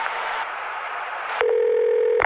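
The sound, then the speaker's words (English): A steady electronic ringback tone sounds over a phone line during an outgoing call, starting abruptly after a stretch of noisy hiss and holding at an even pitch until it cuts off. “But I'm going to call him. I got his number here. I'm putting it in. Let's see here. All right. It's ringing.”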